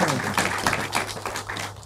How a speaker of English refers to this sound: Can we all give her a round of applause? Seriously.